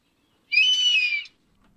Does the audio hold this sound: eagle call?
yes